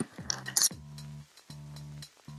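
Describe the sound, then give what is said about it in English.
Keys jingle in a short bright metallic rattle near the start, then a series of steady low humming tones follows in repeated held bursts. “You heard that shit. I got my keys.”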